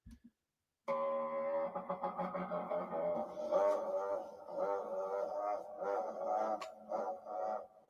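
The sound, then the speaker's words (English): A long, loud old-style T-Rex roar, the old movie-monster kind, rumbling and wavering with pulsing growls for about seven seconds. It follows a brief click and plays on its own with no talking. “Let's throw in an old version of a T-Rex.”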